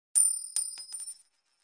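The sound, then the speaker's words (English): Anaya's metal bracelet slips and clatters onto a hard floor at an office doorway, giving a bright ringing chime followed by a few quick jingling bounces that fade after about a second. Fairly loud, with no voices. “Failing to catch her bracelet as it hits the floor, Anaya hurriedly attempts to stop it from chiming.”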